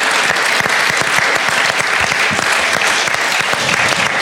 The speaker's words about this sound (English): Let's give a round of applause for our wonderful speakers who came. Thank you, guys.